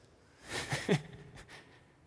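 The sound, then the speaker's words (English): A man mimics cricket chirping with his mouth, a breathy, hissing burst followed by a couple of short, quieter chirps, with no speech. “He is the master of the cricket noise.”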